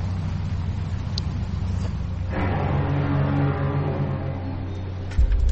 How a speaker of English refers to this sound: for those who are listening to the audio, there's a car pulling up